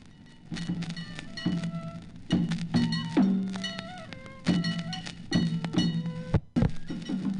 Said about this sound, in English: Once every year, each shrine presents its own festival, and everyone dresses up in special costumes to help the little boys parade with flags and dance and enjoy sacred music performed with flutes, bells, and drums of many sizes. Listen.